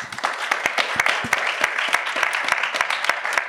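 A crowd applauds steadily, many hands clapping in a dense, continuous patter with sharper individual claps standing out, sustained at an even level throughout without fading.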